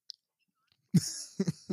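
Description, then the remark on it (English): A few loud sipping and swallowing noises follow a near-silent pause, coming in short wet bursts about a beat apart, with no talking. “You start sipping.”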